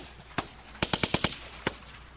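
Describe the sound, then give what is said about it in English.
Sharp, loud gunshot cracks form the beat of a song: a single shot, then a quick run of five evenly spaced blasts, then one more, with no talking. “This is the hardest beat anybody's ever heard. It's made out of gunshots. Gunshots on a beat.”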